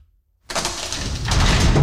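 A creaky door sound effect: after a brief silence, a sustained rough, grinding scrape starts abruptly and swells louder about halfway through, with no talking.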